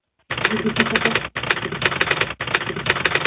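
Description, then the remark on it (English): A 'Typing Monkey' typewriter sound effect: rapid, continuous typewriter clatter, loud, running in three bursts with two brief pauses between them, no voices present. “perhaps we should have had the Typing Monkey.”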